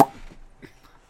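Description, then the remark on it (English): A single crisp pop made with the mouth, like a cartoon cork popping, sharp at the very start and fading quickly into faint background noise. “Cork popping noise? Yeah, cork... Well, just sort of a cartoon pop”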